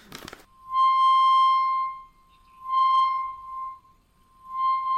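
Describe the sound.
A person uses their mouth to imitate dolphin sounds: a quick crackly burst, then three steady, high-pitched, buzzy tones that swell and fade with short gaps between them, fairly loud and with no talking.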